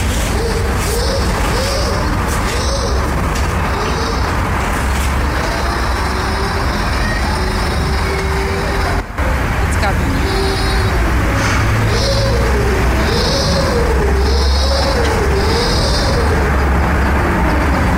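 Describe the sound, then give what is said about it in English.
A small boy, recorded on a phone, keeps up a buzzing, engine-like drone in imitation of a lawnmower, as he had for the past hour, its pitch wobbling up and down over a loud, steady rumble, with a short spoken phrase partway through. “they can pull out their lungs and sound like a lawnmower for a full hour”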